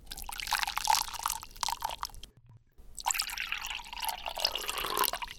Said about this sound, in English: Here's a classic, the sounds of water pouring. One is hot, one is cold.